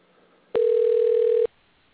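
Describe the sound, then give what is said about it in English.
A single steady ringing tone from a telephone call, heard over a phone line, lasts just under a second before cutting off, loud and clear against faint background hiss. “try this phone call again.”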